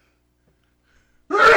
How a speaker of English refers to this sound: Bless you. Boy, that was a big sneeze.